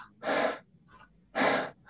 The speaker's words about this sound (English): Exaggerating slightly for effect, but you're breathing in and out from your mouth even quicker.